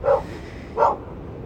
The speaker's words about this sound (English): Listen to the dogs. The dogs. Hey, come up here. The dogs are back, ready for a new year.